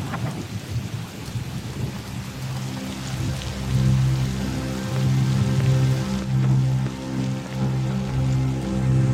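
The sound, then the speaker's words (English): Heavy artificial rain from a rain machine pours down in a steady, loud hiss with low rumbling beneath it, while sustained, droning musical tones swell in partway through. No one speaks. “Turn a rain machine on right when I'm standing under it.”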